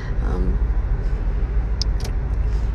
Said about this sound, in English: That's you know, we're in the car right now. I'm on my way to work.